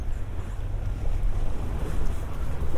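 Sea water laps steadily against harbour decking beside a sea pool, a continuous wash with a deep low rumble and some wind noise, no distinct individual splashes, and no voices.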